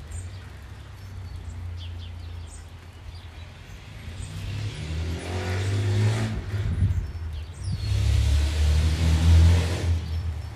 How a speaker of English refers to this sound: There's an old pickup truck. Needs a muffler.